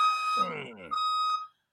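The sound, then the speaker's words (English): Two steady, high electronic beeps like a truck's reversing alarm, each about half a second long, with a brief burst of voice filling the gap between them. “Back the truck up on the motherfucker.”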